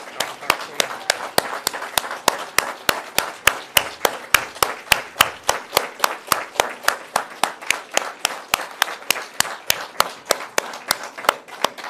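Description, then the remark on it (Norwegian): An audience claps together in a steady, even rhythm, roughly four sharp claps per second, loud and crisp, continuing without a break for about twelve seconds over a faint background murmur. “Jeg kan gjerne røyse dere og klappe. Vi klapper.”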